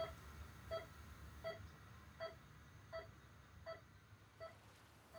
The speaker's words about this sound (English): The beeping in a hospital. Any memories?